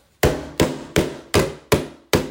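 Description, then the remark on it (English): A hand bangs out six heavy, evenly spaced thuds in a steady walking rhythm, imitating footsteps. Each blow is loud and sharp with a short decay, and no one speaks. “It sounds like a man banging his hand trying to make footstep noise.”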